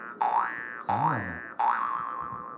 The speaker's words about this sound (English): I'm a little bit of a musician myself. I got a little Jew's harp here.